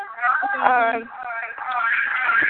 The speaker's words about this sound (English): I can hear an echo. Can you turn something off or down?